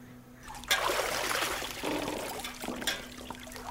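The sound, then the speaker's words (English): Hot water pours steadily into a filling bath, a continuous rushing splash that starts abruptly and keeps going with small gurgling surges, moderately loud. “Is the water to your liking, dear? I can have the slave bring more hot.”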